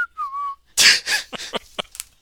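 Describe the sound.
Homer in The Simpsons nonchalantly walks away whistling: a short, casual, clear whistled phrase gliding gently downward for about half a second before giving way to several loud, breathy bursts of noise.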